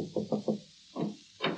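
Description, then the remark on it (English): Three quick, evenly spaced knocks rap on the wooden door of a publisher's office on the 40th floor of a New York City skyscraper, followed by a couple of duller thuds a moment later; no one speaks. “There's a knock at the door, and his secretary appears.”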